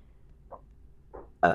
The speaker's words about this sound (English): Damn it. My burping has got to stop. I know. I'm sorry.